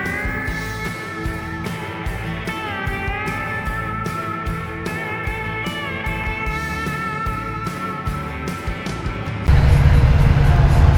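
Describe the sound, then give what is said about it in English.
Big diesel truck engines start up and idle all around at an I-80 truck stop in Iowa with a steady, throbbing drone, then a louder, rougher roar swells in near the end as another engine fires up. No one speaks. “We've got trucks all around us starting up.”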